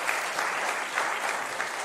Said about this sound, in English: I was actually prepared to just to stay and be quiet, just to see how long it would take to get an applause. So thank you, whoever started that over. It means a lot to me.